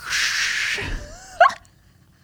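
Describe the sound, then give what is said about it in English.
Someone vocally imitates a dropped light bulb shattering: a long breathy hiss, then a thin rising whistle and an abrupt, clipped mouth burst. No words are spoken. “That was me trying to do like more of a glass sound effect, but I realized I couldn't.”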